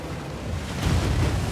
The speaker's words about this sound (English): The hatches in the side of the boat are letting in more and more water as the storm intensifies. Things are beginning to get scary.